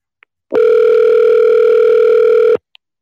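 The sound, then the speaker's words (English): A telephone ringback tone from calling a phone number sounds once as a single steady, loud electronic buzz lasting about two seconds, framed by faint line clicks just before and after, with no voices. “Oh, we'll try calling it back again, though.”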